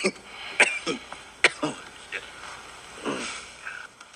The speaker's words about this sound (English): If you can't already tell, … is in pretty bad shape here. He's coughing and wincing at, like, even just the slightest of movement.